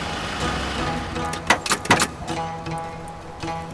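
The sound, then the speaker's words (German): A rented car driving to a former attack site about 20 kilometres from Frankfurt am Main, with a steady engine rumble and road noise, broken by a few sharp clunks and rattles partway through; no one speaks. “Kurz entschlossen mieten sich T-Rex, Raven und Nolo einen Wagen und fahren zu der damaligen Unfallstelle”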